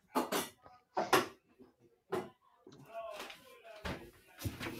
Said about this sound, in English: I'm gonna super close the door.